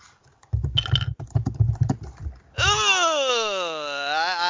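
A quick burst of computer clicks, like rapid keyboard or mouse taps, from rolling dice on a dice emulator, rattles for about two seconds, then gives way to a long, wavering vocal groan.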